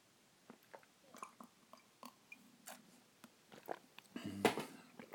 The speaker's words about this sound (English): I'll have a nice sip of coffee away from the mic.